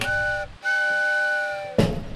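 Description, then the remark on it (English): A train at a bustling train station sounds two long, steady whistle blasts separated by a brief pause, loud, followed by a sudden rush of hissing noise as the second blast ends. “As he got closer, he saw the main entrance to the Sound Castle, but where the parking lot and school bus should have been was instead a bustling train station.”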